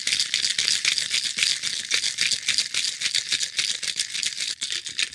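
shaking a cocktail shaker

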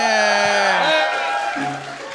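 audience cheering

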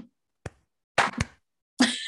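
slow hand clapping

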